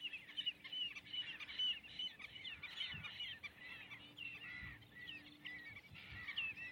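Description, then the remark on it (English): Redshanks calling noisily on a warm day on the 20th of February, a continuous clamor of sharp, high piping whistles and chattering notes overlapping throughout, with a faint low hum underneath. “We a lot of racket from the redshanks.”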